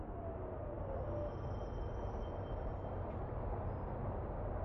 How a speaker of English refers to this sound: Get this train out of here.